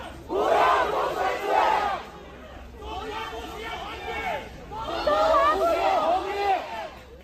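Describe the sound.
A large crowd of protesters in the southwestern Chinese city of Chengdu chants together in loud, rhythmic bursts, calling for the leader's resignation: three surging waves of many voices shouting in unison with brief dips between them.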